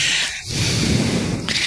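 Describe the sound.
Someone imitates heavy, wheezy breathing: a loud, raspy breath with a hissing draw and a rough, rattling exhale, then the start of another breath. No talking.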